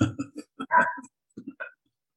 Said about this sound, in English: What's that dog saying? I don't want to be on this choke chain. That dog's not on a choke chain. That dog is on a restraint.